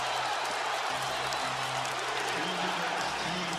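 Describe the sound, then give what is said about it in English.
A packed arena crowd roars loudly and continuously, a dense wall of cheering and shouting that holds steady for the whole stretch with no letup, after LeBron James hits a right-wing three to tie the Lakers' game against the Wolves with 2:02 left. “This crowd is beside themselves.”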